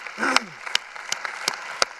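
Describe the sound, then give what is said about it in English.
Audience hand clapping to show agreement that God will take care of them: five sharp, evenly spaced claps in a steady rhythm, with a brief voice sounding under the first couple. “There are more important things, because no matter what happens, how many would agree with me by a showing of a clap of hands that God will take care of you?”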